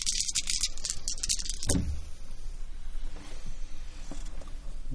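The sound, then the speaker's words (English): Five dice rattle sharply as they're shaken for a willpower roll, then clatter out onto a surface with a thump, followed by a few faint settling clicks. Fairly loud, no voices. “So it'd be two dice plus you're going to add half three. Half of so your five dice. So roll five and you're going to keep your willpower.”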